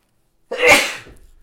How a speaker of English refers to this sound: And excuse the sneeze.